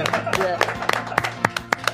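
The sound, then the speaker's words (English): Hands clapping in a quick, fairly steady rhythm, about eight sharp, bright claps in two seconds, with voices talking underneath throughout. “Clapping! We're clapping!”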